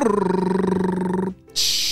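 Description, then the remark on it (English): A voice imitates a drum roll, requested before announcing a birthday child's name, with a steady, rapidly pulsing rolled buzz that lasts over a second. A brief pause follows, then a bright hissing cymbal-like crash. “All right, drum roll please.”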